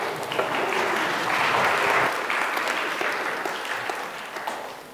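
A crowd claps steadily for several seconds, a dense, even round of applause that swells briefly around the middle and then tapers slightly toward the end.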